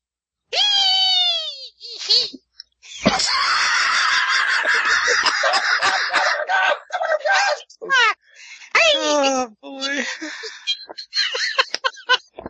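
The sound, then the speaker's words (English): A person loudly imitates a chicken hawk's screeching cry, with several drawn-out, harsh squawks and wavering shrieks, interspersed with rough, noisy bursts. “So you make the sound of the chicken hawk.”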